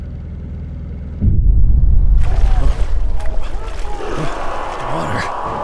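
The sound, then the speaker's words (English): A ship's engine rumbles low and steady as the boat sets out on a long trip of 500 to 600 miles, then surges louder into a heavy churning roar, with wind-like hiss and water sounds layered over the deep throb. “The engine. So comforting.”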